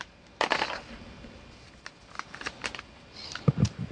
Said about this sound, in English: Alrighty. 2 white dice, I rolled 8, which is white 8.